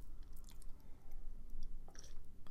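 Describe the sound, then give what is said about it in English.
Someone takes a sip of a drink, with a couple of soft, wet mouth and swallowing noises in an otherwise quiet moment with no talking. “Had to take a sip.”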